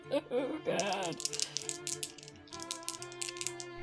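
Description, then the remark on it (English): Dice are rolled to persuade someone in a game, rattling and clattering in a quick series of sharp clicks for a few seconds after a brief burst of voices, with a faint steady hum underneath. “Roll to convince someone.”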